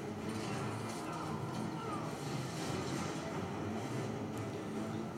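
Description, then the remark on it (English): A steady, heavy roar of airplane engines in a movie scene showing a plane carrying another plane: a dense low rumble that holds at a constant loud level with no breaks. “So what we got here is we got a plane carrying another plane.”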